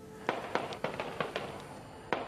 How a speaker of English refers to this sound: The noise of the gunfire was deafening. You could feel them buzzing over your head.